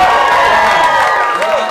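A live show audience cheers and whoops loudly with steady applause underneath, a dense, continuous roar of voices and clapping that holds for under two seconds.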